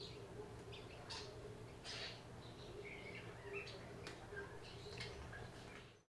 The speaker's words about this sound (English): Can we just take a moment to appreciate how happy these birds sound chirping right now?